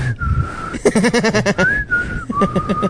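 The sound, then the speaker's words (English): A person vocally imitates the beeps of R2-D2, the Star Wars robot, mixing steady and rising whistled tones with quick, warbling chirps in a playful, burbling rhythm, fairly loud and with no other speech. “And then R2-D2 is the gay one. So beep.”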